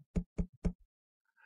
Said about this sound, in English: I heard this knocking at the door. It's just a light tapping.